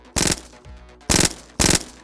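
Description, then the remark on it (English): Three loud, sharp bursts of gunfire in quick succession, fired at three targets with two shots to each target; each burst is a harsh crackling volley, with brief quiet gaps and no voices. “Two shots to each target.”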